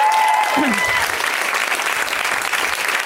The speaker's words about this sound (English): And I just... want you guys to give another round of applause to my wife, Cameron Esposito.